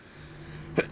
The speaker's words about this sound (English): excuse me for my cough.